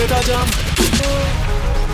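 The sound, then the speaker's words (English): A quick burst of gunshot sound effects cracks out in the middle of loud, dense music, several sharp bangs close together over a pounding, steady backing. “Somebody bust a gunshot.”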